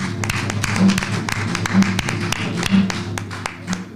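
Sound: audience hand clapping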